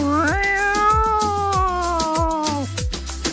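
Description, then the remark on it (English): A person imitates a cat, letting out a long, drawn-out meow, rising at the start and dropping off near the end. It is fairly loud, over a steady, rhythmic low thumping in the background. “I can talk to cats.”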